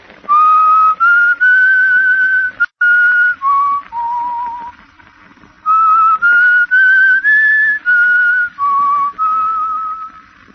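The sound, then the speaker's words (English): A whistled tune heard over a telephone line, thin and narrow-sounding: two phrases of sustained, gliding notes separated by a short pause, loud and clear with no talking. “I'll whistle the tune for you over the telephone.”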